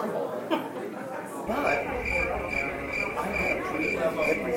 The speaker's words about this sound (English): Yeah, that's right. Crickets.